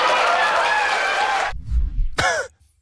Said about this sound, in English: To the hoots and laughter of the crowd.